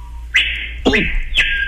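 A screaming piha calls loudly, a piercing ringing whistle, sustained and high, broken by three sharp upswept notes in quick succession, with no voices.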